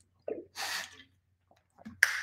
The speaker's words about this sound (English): I'll take a drink of water here. It's going to be good.